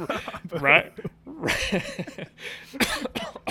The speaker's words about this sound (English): coughing.